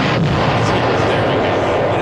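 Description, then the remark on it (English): A loud bomb explosion sound effect: a dense, roaring blast of rumbling, crackling noise that holds steady at full force for about two seconds without fading. “That's worthy. That's bomb worthy.”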